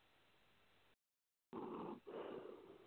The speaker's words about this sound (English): a breathing problem on the line here